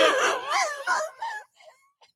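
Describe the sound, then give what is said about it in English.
A voice imitates an old smoker's raspy, hacking cigarette cough, with several strained, wheezing bursts in quick succession that trail off into a faint, breathy rasp. It is fairly loud. “I had this old neighbor. That's how he coughed.”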